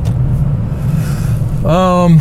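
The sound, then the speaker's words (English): A steady, low engine rumble drones on inside a truck cab, loud and unbroken, with a person starting to talk over it near the end. “That's what happens when you do this in the truck.”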